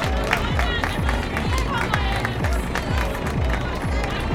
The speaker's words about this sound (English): Again, somebody clap for Jesus!